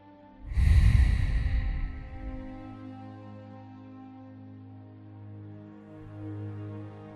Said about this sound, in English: And let's start out with just a few deep breaths. Big inhales through the nose, exhales out of the mouth.